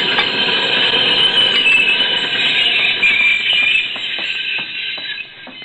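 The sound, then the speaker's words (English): An express train's brakes squeal in a loud, high, sustained metallic screech over rumbling wheels, with scattered clanks as the noise eases and fades toward a stop near the end, halting about 10 feet short of another train. “No, those brakes are taking hold.”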